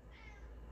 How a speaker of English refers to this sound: There's a cat meowing in the background. I heard her. Meow. Here she comes.